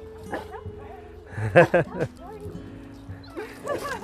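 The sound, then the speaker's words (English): A dog growls and lets out a few short, sharp vocal bursts in the middle, while people talk quietly around it. “hey, no growling.”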